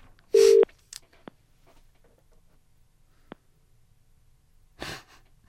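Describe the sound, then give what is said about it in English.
A caller's phone line cutting out: two short bursts of hiss and static with scattered clicks in between, over a near-silent line, with no one talking. “Yeah, it's having some connection. Oh, you phone Mark. Just dropped out there”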